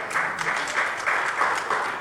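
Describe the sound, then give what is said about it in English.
Scattered applause from an audience at a 10th District Democratic Congressional voter forum at Lake Forest College, Illinois, clapping for the 10th Dems; a steady patter of many hands clapping at moderate volume with slight swells, no voices rising above it. “I hear sporadic clapping for 10th Dems.”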